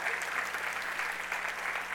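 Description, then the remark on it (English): Steady audience applause for the team that has brought over 1,000 kids to the Hill every year, a dense wash of many hands clapping at an even level throughout, with no pauses or individual claps standing out. “would you please give them a round of applause, please, for that every year?”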